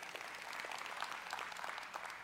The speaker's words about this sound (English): Worship team, thank you guys for leading us in worship. Hey, okay, let's clap.